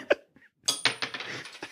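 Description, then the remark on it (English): A tossed quarter misses the glass: it clinks off the glass with a sharp tap, then clatters and rattles in a quick burst of bright, ringing metallic hits that fade over about a second. No one speaks. “Oh my gosh, he just missed the glass.”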